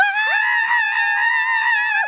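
A few voices let out one loud, sustained, high-pitched scream together for about two seconds, sliding up at the start and dropping off at the end, with no other sound, as they start a game called Scream the Lyric.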